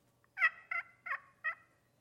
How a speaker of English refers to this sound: but I do this slate call because I want to sound like a turkey. And we hunt turkeys in the spring, and so the whole idea is to sound like a hen turkey. And so after we get all set up, we get on here and we just do these little soft clucks.